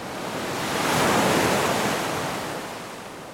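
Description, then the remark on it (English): Ocean waves wash onto the shore in a broad, hissing rush that swells to a peak and then slowly recedes, heard alone with no voices. “But every time I saw that ocean and smelled the air and heard it, I felt better.”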